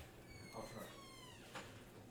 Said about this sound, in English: Hear that door? Yeah, cops coming. Noise complaint.